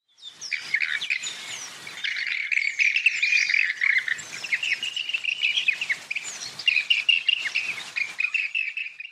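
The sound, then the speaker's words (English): Rainbow bee-eater calls, recorded by Mark Anderson on Kunya Country near Cunnamulla in Queensland, fill the whole stretch: rapid, trilling chirps repeated in busy overlapping bursts, loud, with no talking. “Here's an example of the rainbow bee eater call.”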